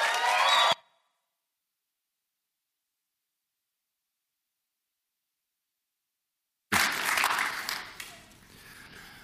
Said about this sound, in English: So before he says a word, will you just invite him with your applause and with your hoots and your hollers,